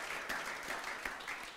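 A crowd claps steadily, a dense, continuous patter of many hands with a few sharper claps standing out, moderately loud and with no voices over it.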